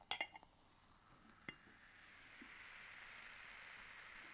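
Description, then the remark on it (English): Sparkling wine is poured into a glass: a few sharp glassy clinks and a tap, then a steady, soft fizzing hiss that builds and carries on to the end. No one speaks. “Before we carry on, can I have a little bit of the bubbly? A little bit of the bubbly. Don't overflow.”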